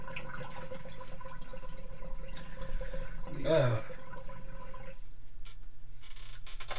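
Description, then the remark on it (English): Water is emptied from a bong (water pipe): a brief splashing gush lasting under a second, fairly loud, with dripping and faint running water around it over a steady low background hum. “Had to clear out the bong, ladies and gentlemen.”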